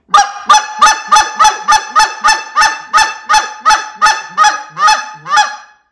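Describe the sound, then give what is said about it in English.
A rapid run of about fourteen loud, high-pitched, aggressive honks blown on a goose call, evenly spaced and sharp, insistent, with no voices around them. “And that right there, a lot of times, guys, when those geese are holding up at 50 yards, and just stay onto that aggressive.”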